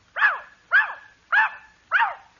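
A dog named Rover barks four times in a steady, evenly spaced rhythm, in answer to being asked how much two and two is. Each bark is sharp, with quiet between them and no talking.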